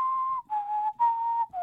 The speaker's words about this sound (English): sets the mood with a little bit of very skillful whistling in the background. Like that? Yeah, that's excellent.